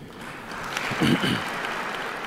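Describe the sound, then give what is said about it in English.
An audience applauding after a speech by Vladimir Putin in Russia, a dense steady wash of clapping that holds at an even level for a couple of seconds, with a brief low murmur of voices rising in the middle. “He stops and the applause starts.”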